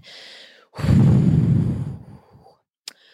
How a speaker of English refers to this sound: Okay, I steady my breathing. In, out.